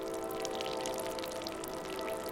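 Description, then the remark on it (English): Brine dripping dry from a sack of salt tied in a towel and hung on a metal hook in the J.Q. Dickinson Sunhouse in West Virginia: a steady patter of many small, bright drops falling irregularly over a constant low hum, with no voices. “A train passes in the distance, but it's quiet in the J.Q. Dickinson Sunhouse, except for the sack of salt dripping dry.”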